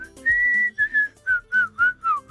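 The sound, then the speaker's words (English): Someone whistles a short tune: one long held note, then a quick series of shorter, clearly separated notes with small pitch slides, bright and fairly loud with no talking. “I had practiced a long time and now I can whistle like this.”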